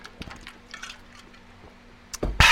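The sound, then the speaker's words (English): Someone takes a sip of water: soft, faint slurping and wet mouth sounds, ending in a short, louder gulp. No one speaks. “Refreshing water.”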